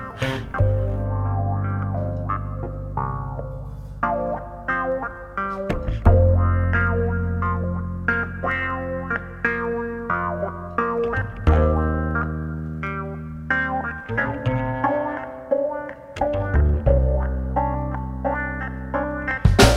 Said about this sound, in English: Guitar with distortion on it. It's weird. That fuzz.